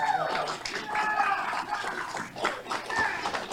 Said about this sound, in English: That is the crowd, many of them uniformed officers, standing up and applauding in the Virginia Senate Judiciary Committee, which has voted to kill the assault weapons ban in Virginia.